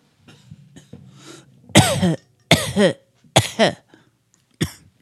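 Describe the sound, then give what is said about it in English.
After a quiet, low rumbling stretch, someone breaks into a series of four harsh, loud coughs after a bong hit, the last one shorter, with no talking. “also, there's some people who have a fetish for bong sounds and coughing.”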